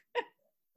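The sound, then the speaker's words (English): A single quick, sharp sneeze bursts out, loud and abrupt, then fades into near silence with a couple of faint small sounds after. “Bless you.”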